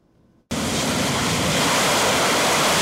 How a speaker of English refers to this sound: Loud and unmistakable, the Harrier is the Marine Corps' most versatile jet fighter, capable of taking off and landing vertically from seemingly any flat surface.